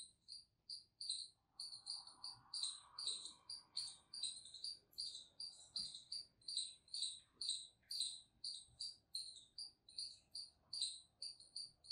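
Outdoors, high-pitched chirping repeats in a quick, steady rhythm throughout, like birds calling, with a faint lower warble early on and no talking.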